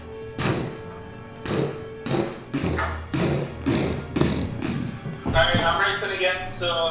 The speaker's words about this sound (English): So it sounds like coming from upstairs. Okay, yep. We got it covered. The floor above. You almost feel like dust is coming down every footstep.